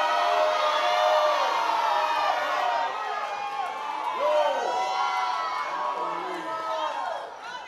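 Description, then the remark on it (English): An audience shouts and cheers together in praise to God, a dense, loud wash of many overlapping voices with rising whoops and cries that carries on steadily throughout and eases only slightly at the end. “Clap your hands, all you peoples, and then shout to God with”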